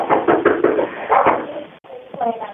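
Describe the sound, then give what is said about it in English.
A strange man bangs repeatedly on a home's back patio door after midnight, trying to break in: a quick series of heavy, muffled thumps in bursts, heard over a narrow phone-like line during a 911 call, with voices talking in the background. “Nope, he's at the back patio door again. I can hear him banging again.”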